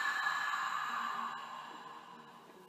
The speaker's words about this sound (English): Nice deep breath in through the nose. And as you exhale, open the mouth, make some sound. Breathing in through the nose. Breathing out, open the mouth.